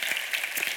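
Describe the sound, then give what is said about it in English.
An audience claps together in a steady, dense patter of many hands, a bright crackling wash of applause that holds at an even level without any voices over it. “Some of you are clapping right now going, thank God it's not me.”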